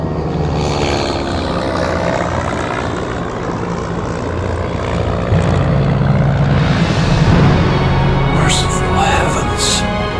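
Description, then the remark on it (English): A propeller airplane drones steadily and loudly from start to finish, a dense, continuous engine roar with a throbbing hum that swells slightly midway, as it flies through a pass at an altitude of 23,570 feet. “As the plane flew through the pass and crested that momentous divide, we beheld a limitless, tempest-scarred plateau”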